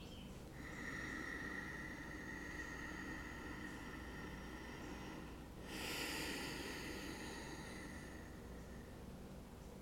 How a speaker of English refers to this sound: Inhaling, aware that I'm breathing in. Exhaling, aware that I'm breathing out.